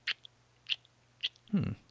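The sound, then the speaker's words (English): A voice imitates a giraffe chewing its cud: three short, crisp mouth clicks spaced evenly, then a brief, louder, lower munching burst at the end. “They always chew their cud, and they're like.”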